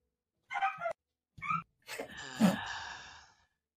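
A dog barks: two short, sharp barks followed by a longer, drawn-out yelping bark that trails off. No one speaks.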